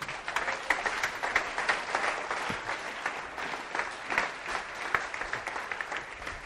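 An audience applauds steadily, many hands clapping in a dense, continuous wash that holds at an even level for several seconds without any talking over it.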